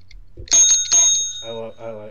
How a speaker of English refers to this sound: Ring the bell.